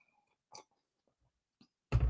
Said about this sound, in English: Well, anyway, like I was saying, let me get me a sip of coffee.